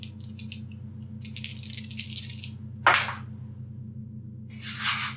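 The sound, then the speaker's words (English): Three dice are rolled for a tabletop game check, landing on two ones and a six; they rattle and click in a quick, bright jumble for a couple of seconds, land with a sharp clatter, then skitter again briefly at the end, over a steady low hum. “Well, it's a really good thing I have advantage because two of my dice were ones.”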